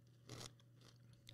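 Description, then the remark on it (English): Crunching of sugared popcorn being chewed, a loud crisp bite followed by two softer crunches spaced through the moment, over a faint steady hum with no talking. “Has the crunch.”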